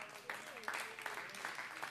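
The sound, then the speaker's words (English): An audience at a church worship service claps their hands together in a steady rhythm as they rejoice, a dense wash of many palms with regular louder accents roughly every third of a second, and faint voices underneath. “Go ahead and clap your hands one more time.”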